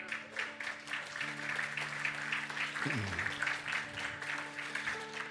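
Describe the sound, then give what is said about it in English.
A church audience claps steadily for several seconds as a round of applause for Jesus after a prayer, a dense crackling wash of hands over sustained keyboard chords, with one note sliding downward partway through. “How about a round of applause for Jesus?”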